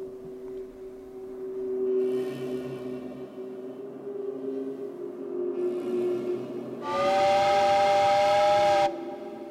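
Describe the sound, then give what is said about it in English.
A steam locomotive chugs and hisses with bursts of escaping steam, then a loud, sustained multi-tone whistle blasts for about two seconds before cutting off abruptly. No one speaks. “without warning, she would exhale in a sharp gust of steam and cause a great scattering.”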